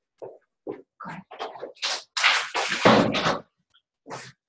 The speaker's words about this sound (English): Actually, let me close my door real quick.